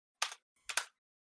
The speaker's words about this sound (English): stop typing.